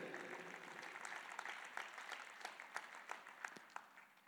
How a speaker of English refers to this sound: Amen. Yeah, clap for you guys. This is good.